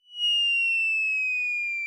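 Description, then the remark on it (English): A sound effect, called bomb drop in a sound effects library: a single loud, pure whistle glides slowly downward in pitch for about two seconds, the classic cartoon falling-bomb tone, with no voices and no explosion. “I think in our sound effects library, it's called bomb drop, but it's the same thing.”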